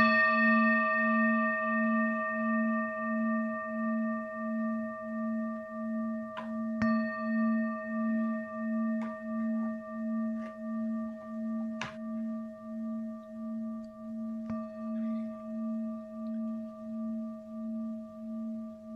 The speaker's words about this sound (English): you can ring a bell.